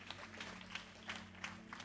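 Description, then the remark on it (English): Faint, scattered audience clapping given as a clap offering during a sermon: a handful of sharp, uneven claps spread across two seconds over a low, steady hum, with no talking. “Another clap offering for the original Godfather.”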